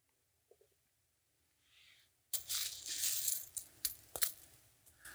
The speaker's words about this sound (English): I want you to catch these coins. You ready? Come on. You cheater, drop them. Drop them,